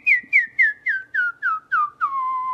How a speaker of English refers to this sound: So if you want to practice whistling, just try making little tiny sounds. You can kind of pretend you're sipping tea in a little tiny space there.